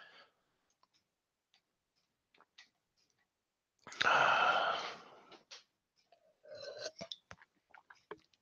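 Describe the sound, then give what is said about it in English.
A person sips a drink: faint mouth clicks, then a loud, brief gulping slurp, followed by a scatter of small wet clicks and ticks as they swallow. No one speaks. “Sorry, I had to take a sip of my emergency.”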